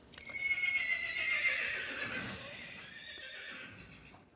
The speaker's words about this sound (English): I'm sorry for laughing. Come on, it's a horse neighing.